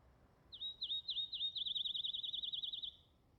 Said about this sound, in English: I can hear birds singing outside.